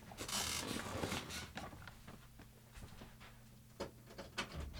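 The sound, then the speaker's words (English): A door is unlocked and opened: a rattling, scraping burst of latch and handle noise, then a few sharp mechanical clicks and a faint creak as it swings. “Okay, well, let me unlock the door.”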